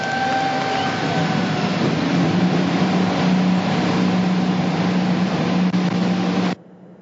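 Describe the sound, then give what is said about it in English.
A field of 27 IndyCar race car engines starting up on pit road in Detroit roars together in a loud, steady, dense drone with a low mechanical hum, sustained for several seconds before cutting off abruptly. “All right, the field of 27 roars to life on pit road.”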